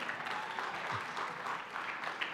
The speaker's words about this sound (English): Everybody give Chris Meyer a round of applause.